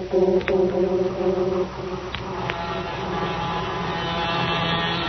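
A train rolls in on schedule to the little country-like station at Del Monte, about a mile from Monterey, with a steady, droning engine hum full of layered tones, marked by a few sharp clicks and knocks early on, the rumble holding level throughout with no voices.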